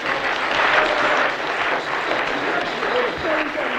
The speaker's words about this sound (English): Give her a clap.